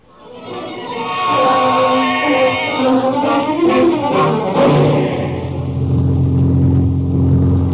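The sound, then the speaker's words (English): A loud propeller-plane engine of a Ranger plane flying over the San Jacinto Range revs up, its harmonic drone climbing in pitch over the first few seconds, then settles into a steady, rumbling hum with no voices. “I think we'd better take a little trip in the Ranger plane over the San Jacinto Range.”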